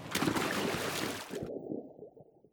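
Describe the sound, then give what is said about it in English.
A big cannonball jump into a hot tub with its bubbles on, followed by a second or so of loud churning and sloshing that abruptly turns muffled and low, like bubbling heard from underwater, fading out. “Cannonball!”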